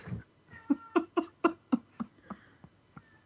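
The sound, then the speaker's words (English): An agitated, upset cat, set off by people's voices, lets out a rapid series of about nine short, strained yowls, loud at first, then tapering off and growing fainter. No one speaks. “The cat wants to kill us.”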